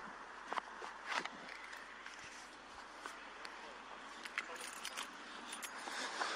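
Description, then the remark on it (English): Keys jangle in several brief, bright metallic bursts spread over a few seconds, quiet, against a steady low outdoor hum with faint rustling, as a man walks through a parking lot to his truck after leaving a comedy club. “There's the keys.”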